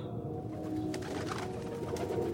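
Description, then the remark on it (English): A pigeon on the top step of a staircase coos in low, throaty, rolling tones, steady throughout, with no voices and only a faint background hush. “The pigeon made a cooing sound above me from the top step.”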